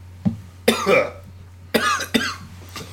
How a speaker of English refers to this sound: All right, you're coughing. Going through some stuff.